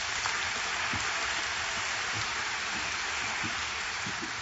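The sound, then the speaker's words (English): A crowd at First Baptist Church applauds steadily to honor several women, a dense, even patter of many hands clapping that holds at one level for several seconds without pause or speech. “So I'd like you to honor these women with a round of applause, please.”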